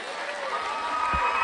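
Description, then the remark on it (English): A crowd cheering after Joe Biden ends a speech with "God save the Queen, man," in a steady, dense roar that holds for about a second and a half, fairly loud throughout, with a brief low thump near the end. “And he says, God save the Queen, man. And they all cheer.”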